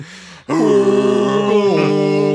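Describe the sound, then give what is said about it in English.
A voice imitates a foghorn with one long, loud, low droning tone held steady for about two seconds, after a brief softer hum and a short pause. “I was going to say, I'm thinking more of like a foghorn.”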